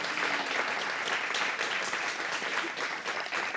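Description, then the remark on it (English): A crowd applauds steadily throughout, a dense, even wash of many hands clapping at once, loud and sustained with no pauses, and no voices break through. “Have a clap for her again.”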